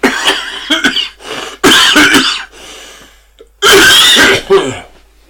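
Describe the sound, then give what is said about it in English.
A series of harsh, loud coughs in close bursts, with a couple of throat-clearing hacks between them and a final strong fit of coughing near the end. “Unlike this cough.”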